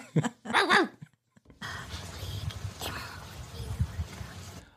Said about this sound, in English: So okay. I can't see this, but this is Easter the dog, okay?